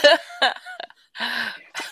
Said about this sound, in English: Hey, ignore any background noise. My dog is sneezing in the background.